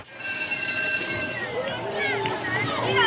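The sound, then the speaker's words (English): A loud electric school bell rings steadily for about a second and a half, then cuts off as voices and background chatter take over. “There's the school bell.”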